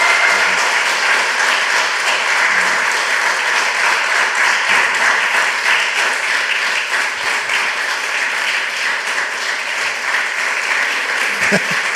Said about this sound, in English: We're going to go to questions. But before we do, can I just get a huge round of applause